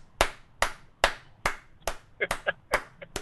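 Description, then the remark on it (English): Slow, steady hand claps applauding a fashion decision, about eight sharp smacks at an even pace, with brief murmurs of a voice slipping in between the later claps. “I applaud that fashion decision, sir.”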